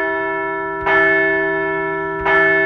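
A large bell rings twice at a slow, even pace, each loud strike blooming into a long, humming resonance that lingers between hits. No voices.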